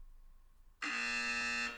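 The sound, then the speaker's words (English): A loud, harsh electronic quiz buzzer blares suddenly after a near-silent moment as a contestant buzzes in during a guessing game about a basketball player, holding one steady, rasping tone for about a second before cutting off. “buzzes in.”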